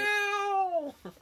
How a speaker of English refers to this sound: But it's a jackal. Jackal. It's gotta be a jackal. Is it a jackal?